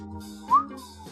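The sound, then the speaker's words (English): A brief, single whistled note that slides upward, rising out of a low, steady background hum before fading quickly. “His eyes widened for a moment before whistling.”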